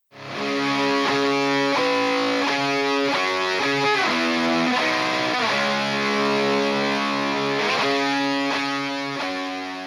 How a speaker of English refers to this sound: We tried to make the guitar as fucked up sounding as we could here, as distorted as we could. It just sounds like a fucking chainsaw, but he's playing these really high noted chords.